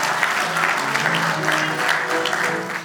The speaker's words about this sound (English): We praise the Lord for the worship team. Let's give them a round of applause as well.